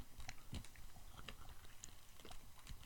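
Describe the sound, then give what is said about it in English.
Steady chewing of a soft chocolate-covered glazed donut, with moist smacking and small irregular crunches over a few seconds, no talking. “I do like the chocolate better than the frosting. They're all a bit much for me. And I've swallowed every bite.”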